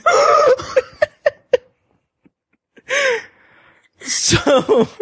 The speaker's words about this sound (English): That was the most dramatic yawn I've ever seen.